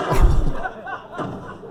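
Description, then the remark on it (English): A steel chair smacks into someone with one heavy thud right at the start, then a voice carries on briefly in the background as the impact fades. “Steel chair.”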